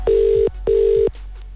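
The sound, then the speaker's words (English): Two steady electronic ring tones pulse in quick succession, the double burst of a phone line ringing out as the Zoo Crew radio show calls back a listener in a Longitude ticket contest, loud with a faint line hiss afterward. “We said, if we give you a call back, all you have to do is answer the phone saying, "I love spin and I want to go to Longitude."”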